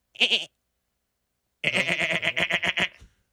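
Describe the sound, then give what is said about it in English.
A person imitates a goat, giving a short nasal bleat followed by a longer, wavering, pulsing bleat after a brief pause, fairly loud with no other sounds. “Is that a GOAT impersonation?”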